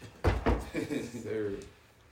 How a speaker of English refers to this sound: I'm gonna finish the story with somebody knocking on the door.